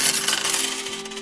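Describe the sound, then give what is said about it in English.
A bright, metallic jingle of coins clattering onto a hard counter as a merchant is paid for milk, a steady shimmer of clinks lasting about a second, with no voices. “Merchant, I will be purchasing the milk now. Here are the coins.”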